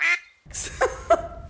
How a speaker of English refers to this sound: For professor, I told you I would quack it out. I'm gonna quack it out, so it's fine.